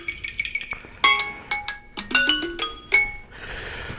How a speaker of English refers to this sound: There we go. That's the timer right there. We're right on schedule.